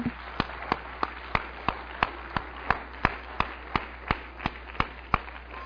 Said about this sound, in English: Give him a hand clap.